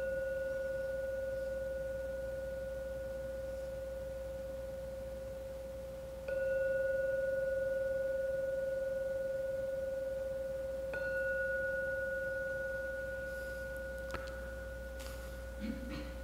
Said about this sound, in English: We'll now ring the gong. When the gong finishes sounding for the third time, please come out from the meditation.